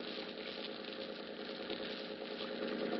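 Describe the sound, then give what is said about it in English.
A boat engine hums and chugs steadily at low speed as the boat pulls into Pier 40, a continuous rumble that holds even throughout with no voices. “The name on the boat is the Dolphin. It's pulling into Pier 40 now.”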